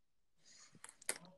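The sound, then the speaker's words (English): A brief, quiet burst of keyboard typing: four or five soft, irregular key clicks in quick succession over a faint room hiss, with no voices. “Who's typing?”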